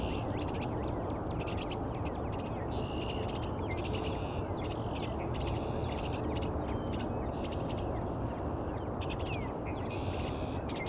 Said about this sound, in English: It's a male and female here, but I think there's a second male. They're all arguing over who's going to get this bluebird box. I think the second male is inside the box right now. The other two on the outside complaining.